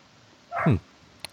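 A single sharp dog bark, fairly close and moderately loud, followed by a brief faint click, with a quiet background and no talking.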